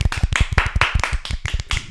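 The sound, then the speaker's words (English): A brief round of applause for the game Simpsons Hit and Run being crowned the winner: rapid, steady hand claps at about six per second, bright and fairly loud, with no voices over them. “So a massive round of applause for Simpsons Hit and Run.”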